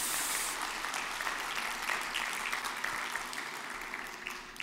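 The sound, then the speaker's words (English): A church audience applauds for mothers in a dense, steady wash of clapping that holds at an even, fairly loud level for several seconds, with no voices rising above it. “Can we give moms a big hand clap in the house?”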